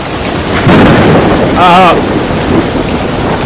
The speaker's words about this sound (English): it's as if a thunderstorm has appeared around the wreckage of our tower.